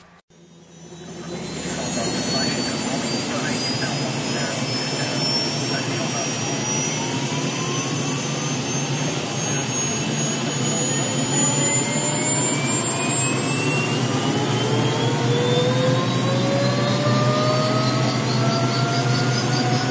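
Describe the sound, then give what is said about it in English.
A turbine aircraft engine starts up for a flight after pre-flight startup checks, a loud roar building in after a brief pause while high whining tones steadily climb in pitch as it spools up. “I'm now going to do some pre-flight startup checks, call for engine start, and we'll see if we can go for a flight.”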